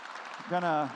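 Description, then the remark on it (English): An audience claps steadily in a brief burst of applause for the band that led worship that night, with a loud sustained voiced cheer or whoop rising over it midway, then the clapping carries on. “Before we get started tonight, can we just give the band a round of applause for leading us tonight?”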